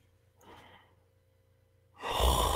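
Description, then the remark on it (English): A breathy yawn: a soft drawn-in breath, a short pause, then a loud, airy exhale that swells and carries to the end. No one speaks. “I'm just yawning.”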